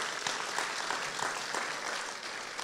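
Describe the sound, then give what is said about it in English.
A crowd applauds steadily, a dense wash of many hands clapping at an even, moderate loudness from start to finish with no voices standing out. “I think that's another round of applause right there.”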